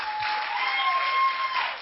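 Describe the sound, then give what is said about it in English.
A church audience claps to God in a sustained, dense wash of applause, steady and fairly loud for nearly two seconds, with a faint tonal whistle threading through it. “Come on, clap to God.”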